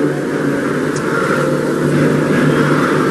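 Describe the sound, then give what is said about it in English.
A car races by at 800 miles per hour in a loud, steady rush of engine and wind noise that fills the whole moment without letup, with a low droning hum underneath and no voices. “So, that's 800 miles an hour.”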